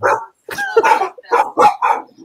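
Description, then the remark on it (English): A dog barks several times in quick, uneven bursts, loud, with a short pause after the first bark before a rapid run of four or five more. “The dog doesn't recognize it.”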